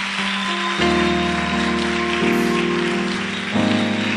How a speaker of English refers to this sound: I thought you were clapping for Jesus.